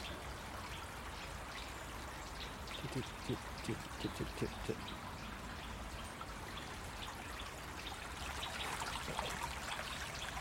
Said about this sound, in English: There's a nuthatch up there.